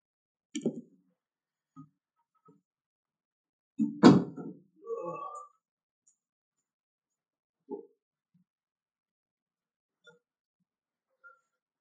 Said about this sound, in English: Actually, I might as well close my door.